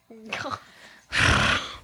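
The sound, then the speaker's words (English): A person imitates their aunt's horse: a short, wavering, whinny-like vocal tone, a brief pause, then a loud, rough, breathy snort that holds for over half a second. “That's my aunt's horse.”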